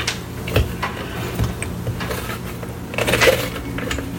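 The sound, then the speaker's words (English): A golden retriever's claws click in a loose, irregular patter, a few light taps at a time with a brief busier flurry, over a low steady hum and no talking. “And the clicking here in the background is a golden retriever.”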